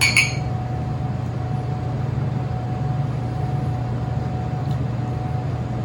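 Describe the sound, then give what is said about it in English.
A quick bright clink of drinking glasses touching in a toast with a freshly poured mixed drink right at the start, ringing briefly, then a steady low engine-like hum fills the rest with no talking. “one of these glasses to see where we are. All right, fellas. See what this is like.”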